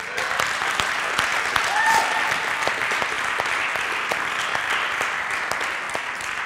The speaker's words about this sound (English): And I just want to, real quick, I just want to give a round of applause to our pastor,